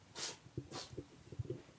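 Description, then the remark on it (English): Two quick, wet sniffs through a nose stuffed up by illness, fairly quiet, followed by faint low snuffly breathing noises with no talking. “Sorry, I'm going to sniff away from the mic now.”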